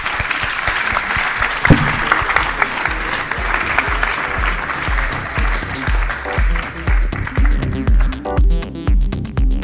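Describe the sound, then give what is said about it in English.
An audience applauds a panel steadily for several seconds, a dense wash of many hands clapping at moderate loudness, with a rhythmic tonal music bed rising underneath toward the end. “All right, we have to stop there, sadly, but can we have a round of applause for our great panel?”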